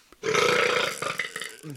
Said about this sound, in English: What'd you do? Try to burp and you didn't? Yeah, it was there, and I just opened my mouth and nothing came out.